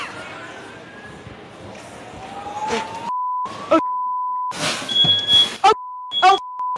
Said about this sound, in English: This young woman is live streaming herself cooking, but it's not going so well. She's causing so much smoke, she sets off the fire alarm in her building.